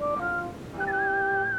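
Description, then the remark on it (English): A brief, cheerful whistled tune, a jaunty jig whistled while setting off home: a few quick rising notes, then a longer held note, with no talking. “he waved goodbye to Michael and set off home, whistling a jaunty jig”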